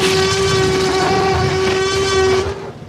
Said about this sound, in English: Do you want me to play the T-Rex growl? Yes, do it. It's such an awesome sound.